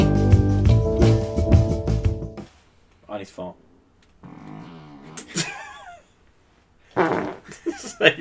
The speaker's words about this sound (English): No, he farted and I answered. That's different.